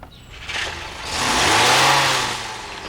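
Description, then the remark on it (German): The engine of a car that was parked across the street, with a man inside, revs up loudly and the vehicle accelerates away, the roar rising and sweeping past before fading slightly, with no voices. “Ist der vor dir abgehauen”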